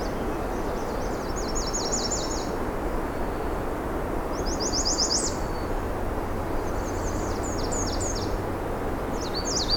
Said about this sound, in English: There is that American Red Start.